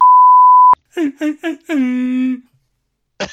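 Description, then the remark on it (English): A steady high beep tone cuts off with a click, then a voice imitates an air horn: three short blasts followed by one long, buzzy, droning honk, fairly loud and alone. “That's my air horn effect.”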